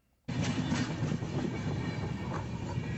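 A train rumbles loudly along the rails, cutting in abruptly after a brief hush and then holding a steady, dense roar with faint rhythmic clatter underneath.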